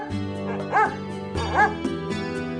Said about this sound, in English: Black smoke streams from the oven. The dinner is burning. Winston barks loudly, warning his friends.